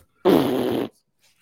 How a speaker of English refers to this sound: I just thought with the rice and beans, and there was no short, like, angry Mexican thing I could come, or like Mexican music sounding thing I could come up with. The fart sounds came to me. So I just figured we would go.